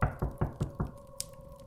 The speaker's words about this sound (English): suddenly hear a little knock at your door.